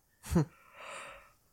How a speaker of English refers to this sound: Yawn, I guess.